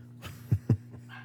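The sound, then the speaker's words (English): Two quick, muffled barks from a dog, spaced a moment apart over a steady low electrical hum, with no one talking. “Why would you assume that she's the reason he's barking?”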